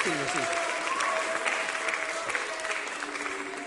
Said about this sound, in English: Give these boys a round of applause.